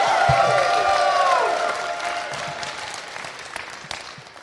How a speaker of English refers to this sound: how about another round of applause for one of the greatest of all time?